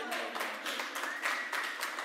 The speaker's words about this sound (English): we were going to clap and they were going to clap back